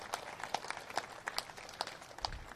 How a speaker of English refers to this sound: Yeah, that definitely deserves a round of applause.